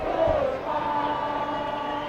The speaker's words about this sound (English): And I can hear the Oakland crowd singing.